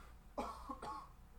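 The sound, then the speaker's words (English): A person coughs twice in quick succession, fairly loud, with no talking around it and only a faint background hum. “so taken aback, he had a cough.”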